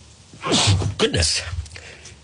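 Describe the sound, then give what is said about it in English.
A person sneezes, a sharp breathy burst followed quickly by a second explosive exhale, loud and sudden. “Live sneeze from the chosen one of what's going on.”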